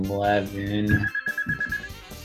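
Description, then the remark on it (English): A mobile phone rings with a steady, high electronic tone that repeats rapidly for over a second, sounding under voices talking. “And more noise. Mind you, my phone”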